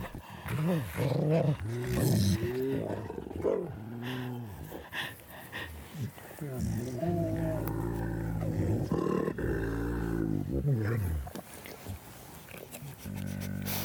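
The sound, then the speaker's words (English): Several wolves growl and whine over one another out of jealousy during a greeting, in a continuous jumble of low rumbling snarls and higher yelping vocalizations, loud and busy throughout. “A little jealousy going on there.”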